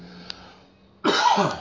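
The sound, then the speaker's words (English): After a second of quiet with a faint click, a single loud cough from a person talking during a recording bursts out and rings for about half a second. “Talking makes me cough, so I don't realize how much I cough until I start doing a recording.”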